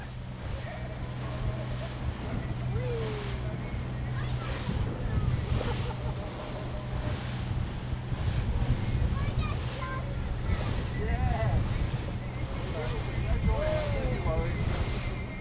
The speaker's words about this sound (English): So we were supposed to be on the big boat, but we're on the smaller boat. And when I say small, I say it's about 30 by 8 foot. There's not enough people for to warrant taking the larger boat, which always used to be full.